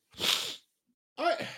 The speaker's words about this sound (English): Bless you.